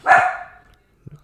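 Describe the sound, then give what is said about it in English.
A single loud, sharp dog bark rings out and trails off quickly, followed by a faint low thump or soft sound shortly after. “And my dog likes it too, apparently.”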